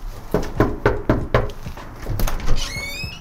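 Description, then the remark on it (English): Four or five firm, evenly spaced knocks on the front door of a home, then a few more scattered thumps and a bright ringing tone at the end. “Do you not like the knocking?”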